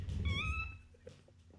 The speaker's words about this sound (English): This guy just fucking squeaked in my ear. Damn it. What the heck? You know, all this squeaking makes me want a beer.